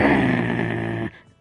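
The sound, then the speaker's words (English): A person imitates a dog's bark with one loud, rough, throaty vocal burst held for about a second before breaking off abruptly into near silence. “Like a chihuahua, not like a dog.”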